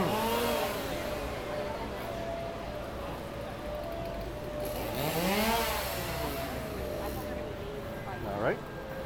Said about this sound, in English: Go through the chainsaw wielding Carneys, then go through it again.